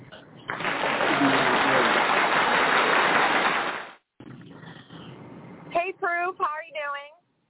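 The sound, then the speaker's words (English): A loud, dense burst of applause-style clapping sound effect on a call-in radio show roars for about three seconds and cuts off abruptly, followed by a brief pause and then a person speaking. “The applause didn't go off yet, so”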